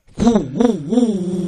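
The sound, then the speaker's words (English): Someone imitates a motorcycle engine with their voice, a loud, buzzing hum that swoops up and down in pitch three times like revving, then holds steady. “I can do a motorcycle noise.”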